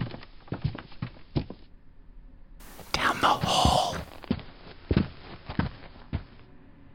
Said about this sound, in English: Everybody watch your step. The floor's soft here. Stairs creaking.